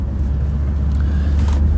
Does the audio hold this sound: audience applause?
no